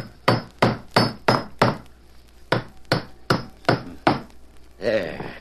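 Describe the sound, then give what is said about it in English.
Nails are hammered into a floorboard to put it back in place: about eleven sharp, ringing blows in a steady rhythm, split into two runs by a short pause, with no talking. “All right, I'll put the floorboard back in place now. I'll hammer these nails in and that'll be sound again.”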